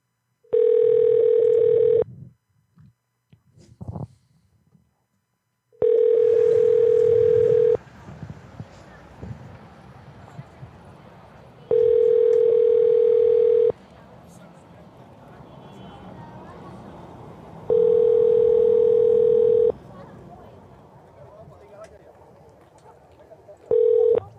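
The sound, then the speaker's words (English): A phone call to a tow company rings out unanswered, the steady ringback tone repeating about five times in even two-second bursts, with low background rumble in the pauses between rings. “That tow place sucks. They suck, man. They didn't answer the phone.”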